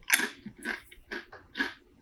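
Crisp crunching of a dill pickle flavored snack: four or five loud, brittle bites in a steady chewing rhythm, with no talking.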